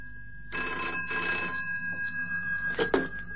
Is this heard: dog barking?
no